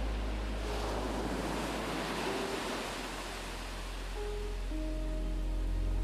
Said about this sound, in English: Let's go somewhere really wonderful. Somewhere by the water, by the waves.